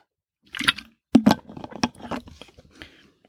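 sipping matcha tea

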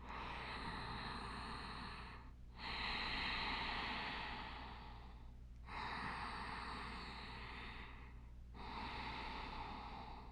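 ocean breath

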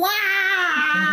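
kitten meowing

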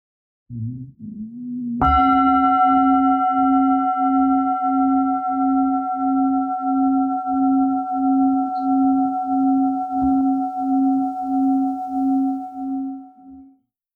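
meditation bell ringing

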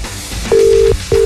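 telephone ringing tone

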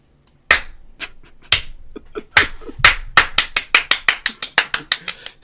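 applause

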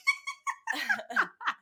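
small dog whimpering

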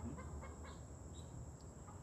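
chickens clucking

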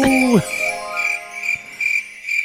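crickets chirping

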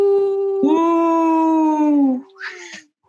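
wolf howl

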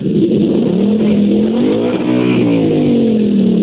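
car engine revving

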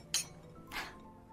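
glasses clinking

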